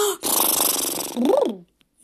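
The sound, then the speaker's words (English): A loud, sputtering raspberry blown with the lips as a 'daddy raspberry' in a clap-your-hands wiggle activity, a rapid buzzing flutter lasting over a second, ending in a voiced, wobbling rise and fall in pitch before cutting off. “Clap, clap, clap, clap, clap your hands and blow a daddy raspberry.”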